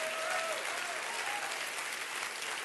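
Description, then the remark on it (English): An audience claps steadily to praise the Lord for a few seconds, a dense, even wash of many hands with no break, with faint voices or cheers rising briefly through it. “Clap your hands real big one more time.”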